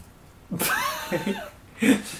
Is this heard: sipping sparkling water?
no